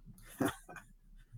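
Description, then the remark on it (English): A dog gives two short barks in quick succession, a sharper first woof followed by a softer second one, fairly quiet and alone against a faint background. “Can we get a woof-woof?”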